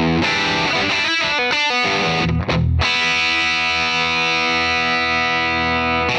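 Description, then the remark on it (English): An electric guitar plays loud, gritty chords through a Digitech Polara reverb pedal: a few choppy stabs, then one big chord left ringing in a long, shimmering wash. No one speaks. “First up, the Digitech Polara Reverb.”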